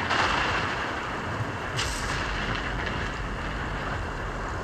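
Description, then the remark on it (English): A roaring, rumbling sound effect for a lightning round segment, like rolling thunder or heavy wind, sustains at a steady loud level for several seconds, with a brief brighter crackle partway through. No one speaks. “Well, part of the way we can do it right now is by adding this nice sound effect that I will put in post-production of the lightning round.”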